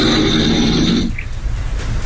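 A man lets out a single loud, rasping snore lasting about a second, close up, then it drops away to quieter low rumbling breath noise.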